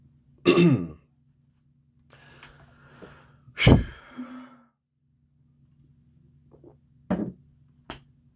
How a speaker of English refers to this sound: All right. My throat's clear.